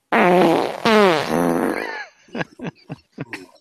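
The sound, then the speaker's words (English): A person blows a long, loud, buzzing raspberry imitating a fart, then follows with several short sputtering fart noises in quick succession. “… wouldn't need to do his fart sound effects anymore”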